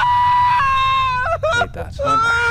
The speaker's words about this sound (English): I scream that out.